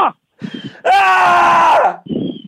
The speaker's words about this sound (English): Yeah. Screaming feels good.